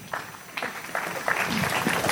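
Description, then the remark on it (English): An audience at Cypress Church slowly claps in unison, with sharp claps spaced about half a second apart that grow denser and louder as scattered clapping fills in toward the end. “I appreciate the slow clap.”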